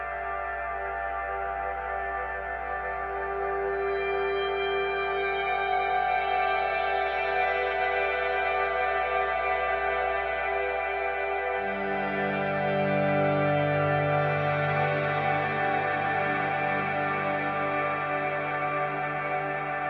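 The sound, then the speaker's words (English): A sustained, reverb-drenched instrumental wash of held notes, swelling into a new lower chord about halfway through, with long smeared tails and no voices. “Because so much of this is about the tail of the reverb sound, it's really fun to be able to play with the faders as the chords or the notes are ringing out, because I could really change the personality or the expression of what they mean.”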